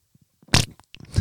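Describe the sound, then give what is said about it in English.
A voice imitates a fart with wet, sputtering mouth noises: a few soft pops, then two louder raspy bursts about half a second apart, with no speech. “I'm going to try and replicate it.”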